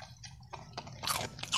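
A dog in the front seat of a van crunches and chews on a biscuit, with a quick series of irregular, crisp crackling bites over a low steady rumble, growing louder toward the end.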